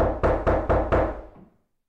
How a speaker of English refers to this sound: And then there's a knock at the door.